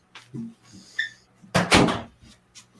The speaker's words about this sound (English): Got to close the door.